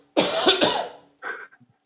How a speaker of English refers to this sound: Let me have a drink and a cough.